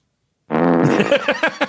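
A loud fart sound effect: a long buzzy, rumbling blast that breaks into several short sputtering pops near the end, with no talking over it.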